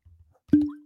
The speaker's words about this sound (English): So are you going to do the cork pop for us here? Hold on.